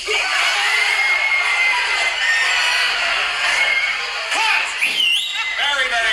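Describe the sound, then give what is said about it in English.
A crowd, directed to act out panic as if Godzilla were ravaging Tokyo, screams and shrieks in exaggerated mock panic, a dense, loud, sustained wall of high-pitched yelling with individual wails rising and falling throughout. “Now I'd like to see you work with a little panic.”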